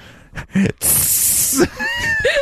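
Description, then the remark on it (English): A person makes a long, sharp hissing sound imitating a snake, a steady breathy hiss lasting under a second, with brief vocal noises and voices around it. “Show you how snake-like I can be.”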